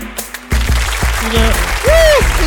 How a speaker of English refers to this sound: Our clapping section is amazing. It's amazing. Hey, clapping section, can you just clap?